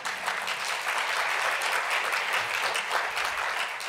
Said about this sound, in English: You can clap, but I'm not done.